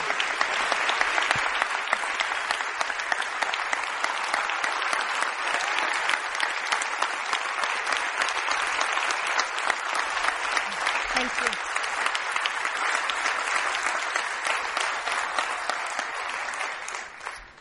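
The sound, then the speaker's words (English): Sustained audience applause as a woman comes up to speak: dense, steady clapping from many hands that holds at an even, fairly loud level for about seventeen seconds before tapering off at the end. “So would you just give her a rousing hand of applause as she comes?”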